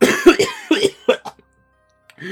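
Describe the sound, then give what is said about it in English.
A man's voice acts out a burst of harsh, hacking coughs, several rapid barks in a row, loud, followed by a short pause and a brief vocal sound. “He starts coughing in your face.”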